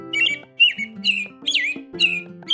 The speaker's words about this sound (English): One bird that is really common where I am and lives in a lot of other places too is a robin. Would you like to hear one of the sounds that they make? Here it is.